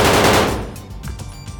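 Heavy machine gun bullets pound against the brick walls of a brick building, starting with a loud dense burst of impacts that fades into scattered, sharper hits. No one speaks.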